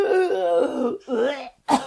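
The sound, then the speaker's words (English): A person vocally imitates a harsh, hacking cough of someone coughing up sand, in three raspy, voiced bursts: a long strained one, a shorter follow-up, then a final sharp hack after a brief pause, loud. “She, like, coughs up a lung full of sand.”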